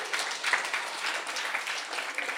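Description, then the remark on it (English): An audience breaks into steady, sustained applause, the dense patter of many hands clapping together without letting up. No one speaks over it. “I need some applause on that.”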